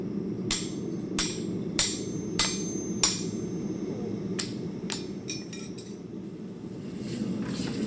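Sharp, ringing hammer blows strike hot iron on an anvil, forging a once rusty railroad tie into a bottle opener: five in a steady rhythm, then a few scattered lighter taps, clear over a low rumbling hum.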